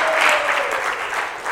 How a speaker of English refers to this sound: When someone is clapping, I think it's a good thing to join the clapping. Oh, and I think you have to clap for our instrumentalists.